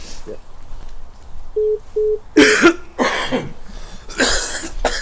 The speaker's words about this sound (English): Everybody's coughing.